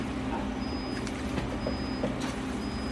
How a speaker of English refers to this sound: Sorry y'all, there's a beeping. I don't know if you guys can hear it, but I can hear it, and it's annoying.